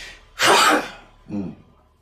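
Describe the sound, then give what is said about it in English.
A single loud sneeze bursts out sharply, followed by a shorter, softer voiced sound as it trails off, with no talking in between. “Bless you.”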